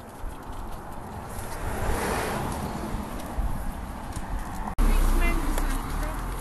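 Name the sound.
road traffic passing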